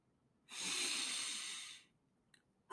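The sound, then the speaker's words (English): A deep, airy breath, part of a breathing exercise to lower heart rate before a basketball free throw, lasting over a second, then a short quiet pause before another breath begins; no talking. “There's different breathing techniques, 4-4-8, as far as breathing in, holding, breathing out.”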